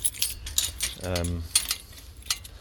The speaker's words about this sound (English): So I'm just busy opening up the gate here. It's quite nice to have your own key to get into a private gate into a forest.